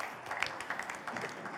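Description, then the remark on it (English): A crowd applauds in a dense, steady patter of many hands clapping, bright and crackly, holding at a fairly even level for a second or two with no one speaking. “round of applause.”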